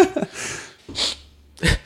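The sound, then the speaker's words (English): Three short, airy sniffles, spaced unevenly over a couple of seconds, with a brief murmur of voice at the very start. “It is getting cold in this hair, huh? No, it's the sniffles.”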